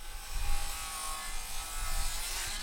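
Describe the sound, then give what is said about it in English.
Contractors' power saws whine steadily as they cut at a bakery being disassembled, a bright, gritty hiss layered with a motor hum and a low rumble underneath, continuous throughout. “Instead of wood ovens smoking, the saws are going.”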